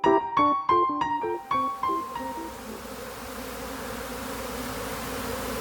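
A dense, steady drone of many honeybees buzzing together, like a swarm. It starts beneath a quick run of bright, bell-like notes, then continues alone at an even, moderate volume.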